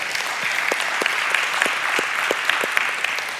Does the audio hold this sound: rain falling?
no